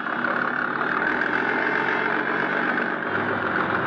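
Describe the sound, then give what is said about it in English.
A motorboat engine drones loud and steady as the boat shoves off from the waterfront, a continuous even rumble with a bright mechanical whine that holds without pause, no voices present. “My boat was all ready, so I went aboard and shoved off.”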